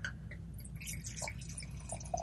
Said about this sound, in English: It's pouring a dark reddish, kind of Flandersy. There was almost no pop when I pulled the cork. Doesn't pour with a very big head.